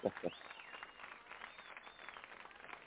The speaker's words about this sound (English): I love that applause.